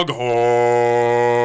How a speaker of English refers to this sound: Foghorn!